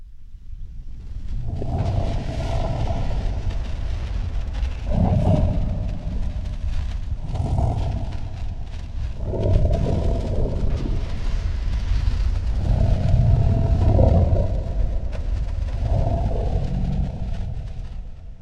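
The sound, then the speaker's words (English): A huge, deep Balrog monster roar effect drenched in heavy 'Moria Echo' reverb, with about six growling surges rising over a constant loud low rumble, no voices present. “So let's finish things off here by adding a little bit of Moria Echo, a huge kind of reverb sound.”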